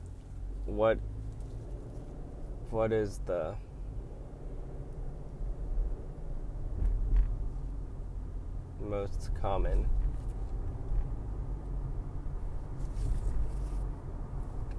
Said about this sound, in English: Car out there. That's driving into downtown LA. See a lot of Toyotas.